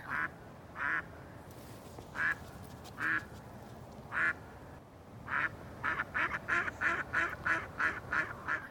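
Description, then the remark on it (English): A duck on the other side of a river at first light quacks over and over, a few spaced calls at first, then a rapid run of harsh, hoarse quacks near the end, loud against a steady low outdoor rumble. “And we waited there, and shooting light was coming up, and it was a duck. He was just quacking himself hoarse.”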